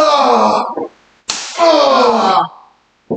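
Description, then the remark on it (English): A single sharp, hard smack of a solid, very hard resin paddle lands between two loud, drawn-out voiced cries, with another brief burst of sound cut off at the very end. “So now she has the resin paddle. It's very solid, very hard.”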